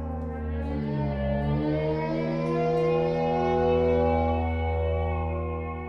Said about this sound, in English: Every sound you hear is actually a saxophone sound. It's like a highly modulated saxophone, like a couple saxophones playing together, or just one saxophone sound. It's all sounds I recorded from saxophones.